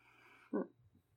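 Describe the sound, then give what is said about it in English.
One short, muffled bark from a dog named Roxy sounds in the background over a faint hum, with no one speaking. “Okay, who's got dogs in the background?”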